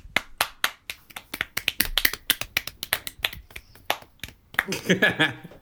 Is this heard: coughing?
no